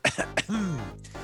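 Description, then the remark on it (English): Two sharp coughs in quick succession, followed by a drawn-out, throaty vocal sound that trails off, with no speech. “Coughing, not because of awkwardness, but because I'm dying of COVID-19 due to a lack of doses of the vaccine, ladies and gentlemen.”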